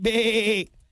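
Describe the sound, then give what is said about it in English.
A single drawn-out, wavering bleat lasting just over half a second, fairly loud, voiced by a person imitating a goat, then quiet. “You're like a goat.”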